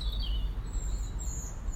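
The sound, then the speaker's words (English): Birds sing faintly outdoors on a farm on a sunny Sunday afternoon around 4 o'clock. Thin, high whistling notes drift over a steady low rumble of wind and open-air ambience, with no one talking. “I just had this real hankering to get down to the green and the sunshine and the birds and fresh air down at the farm, so here we are.”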